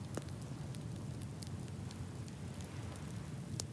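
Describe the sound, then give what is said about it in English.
A wood fire crackles steadily beneath a soft, hissing roar, with sharp pops and snaps breaking through at irregular intervals. It's fairly quiet, with no voices. “Hear the crackling of the wood.”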